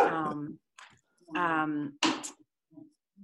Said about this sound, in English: Can you get rid of the dog?